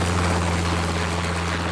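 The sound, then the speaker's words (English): A helicopter's rotor whirs in a steady, loud drone over a low engine hum, with no voices and no break in the sound. “Chopper traffic this afternoon brought to you by Freedom Mobile.”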